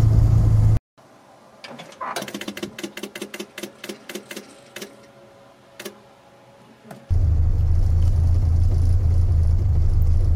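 A classic Morris Minor car's engine drones loudly and steadily while driving, briefly cuts out, then a quieter stretch of rapid, evenly spaced mechanical clicking follows before the engine's low rumble returns.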